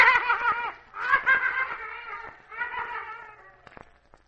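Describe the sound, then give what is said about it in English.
Caged circus big cats snarling and yowling in three drawn-out, wavering bursts, loud, fading toward the end with a few short sharp knocks. “Besides, he sleeps near them, and he's armed to the teeth, and you nor nobody else could let those cats loose.”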